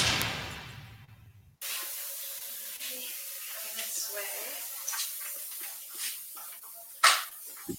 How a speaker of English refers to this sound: They're spraying, it's something in a spray bottle.